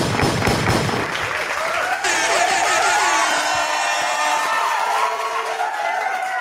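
A live audience claps loudly for a man coming to the stage, then cheers and whoops rise over the steady applause, which carries on without a break for several seconds.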